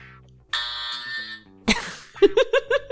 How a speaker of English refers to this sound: I will say …. No. Play the buzzer. Oh, sorry.